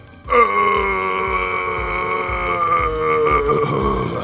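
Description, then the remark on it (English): A huge, drawn-out burp erupts suddenly in a restaurant, right after someone guzzles 375 ml of coke straight down, and rumbles on loudly for about four seconds, deep and croaky with a steady tone, with no talking. “As soon as it hit the gut and it was finished, this huge burp.”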